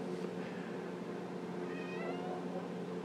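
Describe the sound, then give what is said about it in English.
A cat meows in drawn-out, wavering cries over a steady background hum, with no talking, the calls moderately loud. “That was another message from the Cat Council.”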